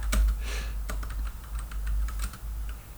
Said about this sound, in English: No, it's funny because, like, usually you type it on the keyboard doesn't register, but it was like just vicious keyboard typing.